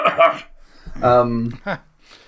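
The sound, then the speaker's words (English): Two harsh coughs a second or so apart, the second shorter, with a brief throaty voiced sound between them. “you know, so double cough you've got there.”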